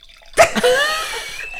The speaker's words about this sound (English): Not peeing. Wine pouring. That was not pee.